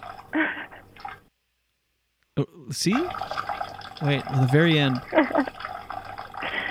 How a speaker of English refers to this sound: By the way, it sounds like it's obviously in a toilet, the pee, but at the end it sounds like it's just on a rug. Listen to the end.